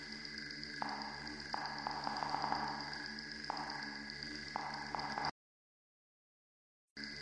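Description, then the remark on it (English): A dense, buzzy electronic chirring of digital bug sounds like a swarm of agitated crickets, steady with shifting crackly texture, then it cuts out abruptly into silence before briefly returning. “Those are digital bugs.”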